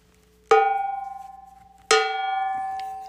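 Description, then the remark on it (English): A bell is struck twice, about a second and a half apart, each loud bright metallic clang ringing out and slowly fading, with no talking. “Oh, you want to hear the bell?”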